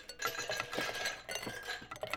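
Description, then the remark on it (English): Ice cubes clink and rattle against glass in a quick, irregular flurry, bright, as Blondie makes another pitcher of iced lemonade in the Bumsteads' white kitchen on a hot day on Shady Lane Avenue, with no voices. “That's Blondie making another pitcher of iced lemonade.”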